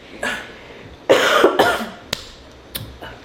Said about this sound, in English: But yeah, it's like flu season, and this cough has been going around, y'all. Oh my. Y'all are gonna hear me cough. Y'all heard me cough last week. I'm already about to clear my throat, but.